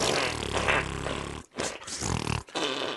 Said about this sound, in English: That'd be funny out of context. Just fart noises.